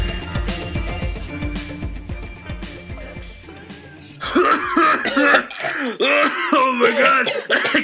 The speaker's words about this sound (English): Cough.